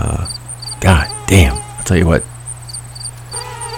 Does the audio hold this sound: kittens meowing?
no